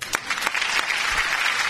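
A burst of studio audience applause on the Border Patrol show on Sports Radio 810 WHB, a round of applause for an intern's successful food run: dense steady clapping filling the whole clip at a fairly loud, even level, with a few sharper individual claps standing out early on.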